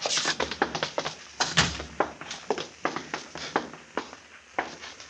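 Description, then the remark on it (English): The door of Delmonico's opens around 8:30 and Frank Bissell and his men step out, their footsteps an uneven run of hard knocks over about five seconds, with no one speaking. “It was going on 8:30 when the door opened, and Frank Bissell stepped out, his boys following after him.”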